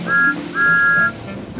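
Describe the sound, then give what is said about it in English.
Two bright, steady peeps of the whistle of Thomas the engine as he sets off coupled to flatbeds loaded with pipes, at a single high pitch, a short toot followed by a longer one, loud over a low rumbling background. “So Thomas was coupled up to the flatbeds, and with a peep of his whistle, he was on his way.”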